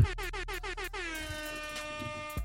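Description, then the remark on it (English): A loud air horn sound effect: a rapid series of about six short, punchy blasts followed by one long sustained blare, abruptly cut off near the end. “Air horn time.”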